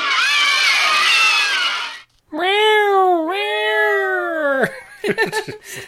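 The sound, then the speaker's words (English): In a trailer for a film shot in 1972, two long, loud, drawn-out cat meows follow a burst of noisy, crowd-like screaming, then a few short, choppy cat cries at the end. “When the cats are hungry, run for your lives.”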